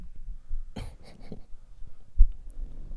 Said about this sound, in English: Clear your throat.